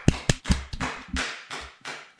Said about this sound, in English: And guys, give yourselves a round of applause for watching six films. We did it.